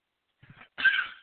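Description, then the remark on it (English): A short, faint intake of breath followed by one loud, harsh burst of a cough, with no talking. “Excuse me, I had to cough.”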